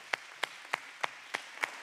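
Audience applause in a church as the next speaker is called up: a steady wash of clapping with six sharp, evenly spaced claps standing out in a regular rhythm. No one speaks over it.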